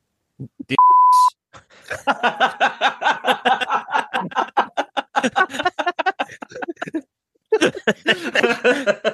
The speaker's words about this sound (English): Gonna beep that out.